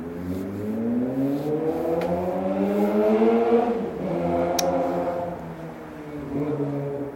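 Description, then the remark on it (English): Loud motorcycle engines rev and whine as they speed past through a residential area, pitch climbing then dropping, with another engine surging in behind. No voices, just the steady roar of traffic. “I hope I'm not considered too loud right now, 'cause those fucking motorcycles are a nuisance.”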